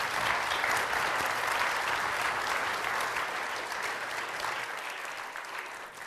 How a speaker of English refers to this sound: Thanks so much. Give these panelists a round of applause.